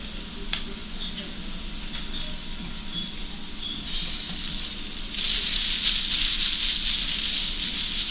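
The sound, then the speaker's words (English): A pitch pine bonfire burns with dense, steady crackling and hissing that swells louder halfway through into a fierce, roaring blaze, with a sharp pop near the start, as a storm with lightning approaches. “Bonfire's lighted. Boy, look at that pitch pine burn, will you?”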